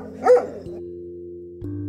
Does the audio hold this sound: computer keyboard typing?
no